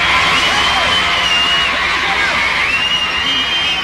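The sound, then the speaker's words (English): A large crowd at a band concert cheers loudly and continuously as a singer comes out dressed in white, with high-pitched shouts and screams rising over a dense wash of applause and voices throughout. “A big round of applause for …!”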